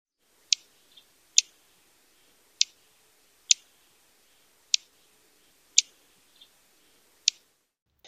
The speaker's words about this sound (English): Vesper Sparrow calls are sharp chip that sound like this.